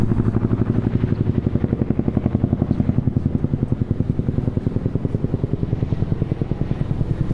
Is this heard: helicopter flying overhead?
yes